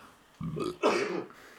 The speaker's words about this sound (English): You done coughing, bud? You done coughing?